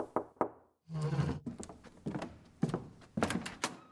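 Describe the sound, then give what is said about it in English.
Two sharp, evenly spaced knocks on a door, followed by a brief low hum and a string of heavier thumps and rattles. No one speaks. “Until one morning, unexpected, a knock on the door.”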